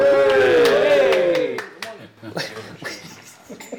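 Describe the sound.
A small group whoops and cheers loudly at first, with scattered hand claps popping through. The voices fade after a second or so while a few claps and murmurs continue.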